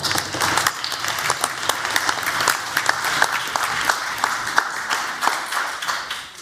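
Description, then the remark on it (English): An audience at a debate applauds the debaters steadily, dense overlapping claps sustained at an even level for several seconds before tapering slightly at the end. “Audience, please join me in another round of applause for our debaters.”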